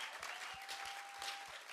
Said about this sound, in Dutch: Dan wil ik dat we een geweldig applaus geven voor onze geweldige pastor.